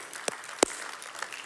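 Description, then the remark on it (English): People applauding for God during a sermon, a steady patter of many hands with a couple of sharper claps standing out, moderately loud and brief, with no voices. “And this, yeah, you can clap for God.”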